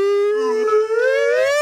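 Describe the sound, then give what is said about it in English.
A person imitates a whale call with one long, sustained moaning tone that rises slightly toward the end. The voice is close and fairly loud, with no speech around it. “you have to do the make a whale noise.”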